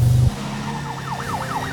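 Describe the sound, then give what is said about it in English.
A convoy of police cars drives up a road, sirens wailing in a rising and falling sweep over the low rumble of vehicle engines, moderately loud and steady, with a brief heavy thump at the very start. “A convoy of police cars drives up a road and find themselves right in front of the T-Rex.”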